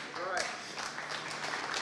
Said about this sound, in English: That's the worst hand clap I've ever heard. You guys would be phenomenal on a golf course around the putting green.